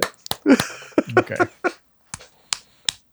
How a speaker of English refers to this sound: None of us clapping in succession. It just sounds like random seals just flipping around.